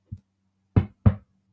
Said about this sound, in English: And then, right when Maya was about to go walk into her room, she hears another knock!